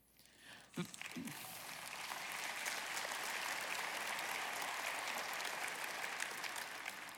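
An audience of thousands breaks into sustained applause during a sermon, many hands clapping in a dense, steady roar that swells after a brief voice at the start and holds strong to the end.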